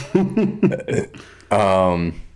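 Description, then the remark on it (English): A man talks briefly, then lets out a single loud, drawn-out burp while drinking a White Claw, a low, steady rumble lasting about half a second. “Excuse me, I just burped.”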